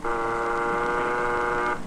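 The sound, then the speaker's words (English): A single loud buzzer, pushed to open a market, blares in one steady, harsh, mid-pitched tone with a rich buzzy edge, holding for nearly two seconds before cutting off. No one speaks. “Just push this buzzer.”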